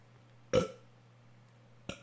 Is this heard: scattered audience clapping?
no